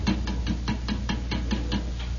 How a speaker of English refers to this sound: And we'd knock again, you know, like this.